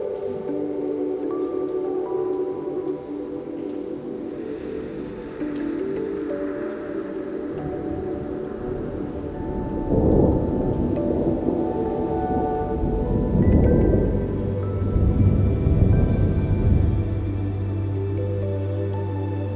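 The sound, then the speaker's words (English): Steady rain pours down at night with a constant hiss while low, rolling thunder rumbles through in several deep swells, growing heavier toward the end. No voices. “Night Rainstorm”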